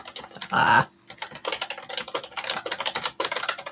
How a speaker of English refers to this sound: Can you hear my keys? Right. It's the mechanical keyboard. Mechanical keyboard. Just have to, you know, have a very sensitive microphone that catches the loudest keyboard in the world.